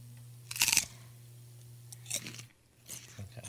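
A loud, sharp crunch as teeth bite into a crisp raw vegetable, followed by a few softer crunchy chews. A steady low hum runs underneath, and no one speaks.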